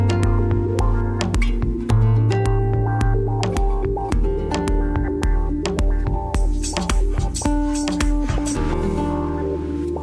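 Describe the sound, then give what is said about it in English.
A Metro light rail train at the Expo Crenshaw station, with a steady humming electric whine that shifts pitch in steps, broken by repeated sharp clanks and clicks throughout. “That's the sound of the light rail outside of the Expo Crenshaw station.”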